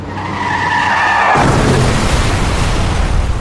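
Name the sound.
car skidding and crashing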